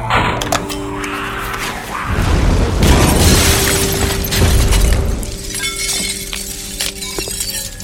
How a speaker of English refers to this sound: Mark 56 hand grenade. Yep, it even stopped a bull elephant in its tracks.